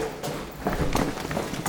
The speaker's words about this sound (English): Sherlock and Watson came running down the hall.